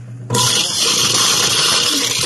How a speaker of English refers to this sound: He ASMR is coming to people using garbage disposals as ASMR. Just like imagine hearing this. ASMR, dishwasher, and disposal sounds.